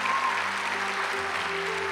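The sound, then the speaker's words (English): An audience gives a steady, sustained round of applause to honor and thank visiting pastors, a dense wash of many hands that stays loud and even throughout, with a faint low musical hum underneath. “So can we give them a round of applause, just honor and thank him for their sacrifice and love?”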